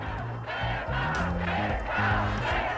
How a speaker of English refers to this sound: The crowd marches to the Stonewall, stopping traffic on 6th Avenue, clapping and chanting, "Gay power."